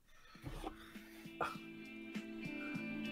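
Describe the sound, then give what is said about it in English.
A dog gives a few short, scattered, faint barks over a steady low hum with no one talking. “My dog was fucking barking and shit, so I had to mute it.”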